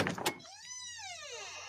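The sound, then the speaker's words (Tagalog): An unlocked front door opens: a couple of sharp latch clicks, then a long, drawn-out creak of the hinge that rises and falls in pitch before fading, with no one talking. “Hindi pala nakalock yung front door mo.”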